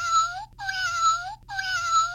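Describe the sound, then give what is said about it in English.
A buzzing, metallic purr-like whir from a cat-paw toy on a stick repeats in three even bursts, each lasting nearly a second with short gaps between, fairly loud with no voices. “That sounds kind of like a purring noise, actually. Yeah. It's like a metallic purr.”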